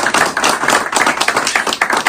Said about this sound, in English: We're just gonna give him a round of applause for everything.